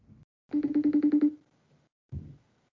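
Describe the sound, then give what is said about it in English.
A phone call's ringing tone as someone calls a friend on his phone: a quick burst of about eight rapid electronic pulses, bright and fairly loud, bracketed by brief muffled low sounds before and after. “No, I'm calling him on his phone.”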